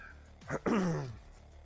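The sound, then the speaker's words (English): A person clears their throat: a short rough burst, then a longer voiced rasp that slides downward in pitch and fades out after about a second. “Sorry about clearing my throat right in your ear holes.”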